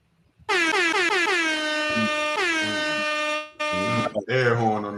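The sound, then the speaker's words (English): A loud, blaring air horn sounds in several long repeated blasts, harsh, with brief pauses between bursts and a final stuttering burst at the end. “Air horn on that one.”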